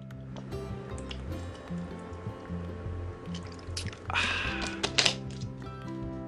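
Someone takes a quick sip of water, a short wet slurp and swallow, heard over a faint steady musical hum with no talking.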